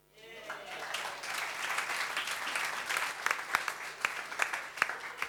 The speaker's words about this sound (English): Oh, that was brilliant. Well done. Thank you. A big round of applause for our poets this evening.